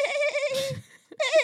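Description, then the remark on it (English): Two loud, wavering sheep bleats, separated by a brief pause with a soft rustle, the second bleat rising sharply and trailing off. “to do your thing and put that sheep on there now.”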